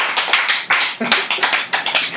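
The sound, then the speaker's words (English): Audience applause: a steady, fairly loud run of bright, crackly hand claps that keeps going without a break, with no voices heard over it. “All those applause were for you, man.”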